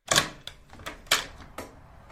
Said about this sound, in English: Oh, hang on a second. I think I hear the door knock. Let me go and open it and just see who's there.